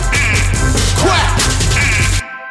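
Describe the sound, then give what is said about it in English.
Loud, rapid quacking sounds imitated by voices over a thumping music bed, continuous, cutting off abruptly near the end. “I can't hear you quacking, y'all.”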